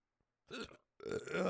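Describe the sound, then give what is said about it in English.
Two abrupt, throaty hiccups in quick succession, the second longer and louder, with no talking around them. “Yeah, I'm trying to get rid of these hiccups.”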